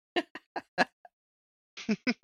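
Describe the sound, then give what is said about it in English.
A run of short, harsh coughs from a person with a COVID cough: four quick hacks, a brief pause, then another rapid cluster of coughing. No one speaks. “I got the COVID cough.”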